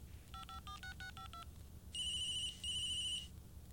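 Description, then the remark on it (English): A quick run of about seven keypad tones as a number is dialed on a cell phone, followed by two loud, steady electronic ringing bursts from a phone, with no talking. “I pulled out my cell and punched up her number.”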